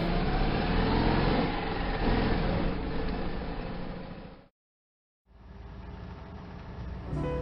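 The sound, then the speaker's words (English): A car engine runs steadily with a broad low rumble as a family drives to a hotel at about 3 a.m. The engine cuts out abruptly into about a second of silence, then resumes and continues humming to the end. “Well, we're driving to the hotel now.”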